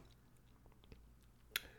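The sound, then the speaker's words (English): Someone takes a quiet sip of water and swallows, with soft wet mouth clicks and one sharper click near the end. No one speaks. “Quick sip of water, boss.”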